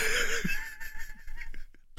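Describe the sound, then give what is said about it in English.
A cartoon dog in a sneezing fit: a string of wheezy, breathy bursts and snorts with squeaky high-pitched tones, coming in quick irregular spurts with no talking. “The dog, it sounds like it's having a sneezing fit.”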